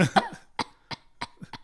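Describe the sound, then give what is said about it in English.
A coughing fit: a rough, throaty burst followed by four short, sharp coughs at fairly even intervals, with no talking. “Bit of the old spicy cough.”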